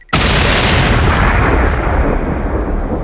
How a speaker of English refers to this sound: After carrying out a test explosion, they planned a larger bomb to be used in Britain.